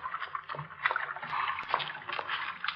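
Continuous watery splashing and sloshing in a sewer, with an enclosed, echoing quality, steady and moderately loud, with intermittent small splats and gurgles throughout.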